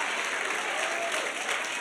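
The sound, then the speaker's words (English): A church audience applauds in praise during a sermon, a steady, dense wash of clapping that holds at an even, moderate level throughout, with no voices standing out. “See, some of us could clap over the sins that we recognize are wrong.”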